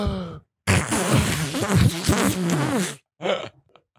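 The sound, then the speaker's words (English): A long, sputtering wet fart lasting a couple of seconds, loud, with a wavering buzzy tone, followed by a shorter squelchy burst after a brief pause. “Yeah, that was a wet one.”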